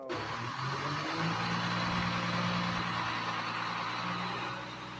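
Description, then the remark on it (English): A diesel garbage truck engine rumbles steadily, a low droning growl with a broad noisy hiss over it, holding constant for several seconds before easing off slightly. “It is a garbage truck, ladies and gentlemen. It is a diesel truck.”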